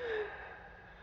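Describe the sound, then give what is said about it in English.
A single breathy exhale during a breathing exercise, lasting about a second, with a thin whistling wheeze riding on the airflow at the start before it fades into soft, hissing breath. “Focus on your breathing.”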